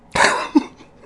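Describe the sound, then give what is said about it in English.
A single harsh cough from a sick person bursts out, followed by a short voiced catch as it trails off, with no talking around it. “I'm sorry if I have to take like a coughing break every once in a while, but I'm good.”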